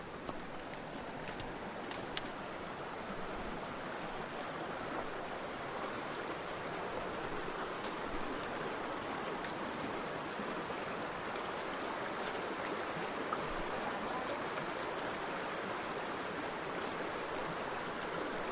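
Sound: river stream flowing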